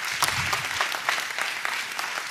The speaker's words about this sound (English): give a big hand clap and a big shout.